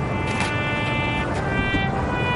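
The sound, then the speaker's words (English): Bells chime the hour at a memorial with steady, ringing metallic tones that overlap and sustain, their bright partials humming evenly over a low background rumble, with no voices. “Except for the hourly chiming of bells”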